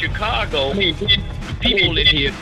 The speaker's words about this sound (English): you echoing right fast. I got you, brother. You echoing back in my ear.